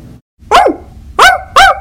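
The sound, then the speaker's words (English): A dog barks three times in quick succession, sharp, each bark loud and bright, with a brief pause after the first and no one talking. “Something wrong with that dog?”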